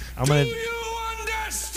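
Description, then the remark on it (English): A man yells in a harsh, strained voice in the intro of a played music video. It is one drawn-out shout whose pitch jumps up and holds high for nearly two seconds over a steady low hum. The man is an actor who played one of the corporals in Animal House. “Do you know who that guy is that's yelling?”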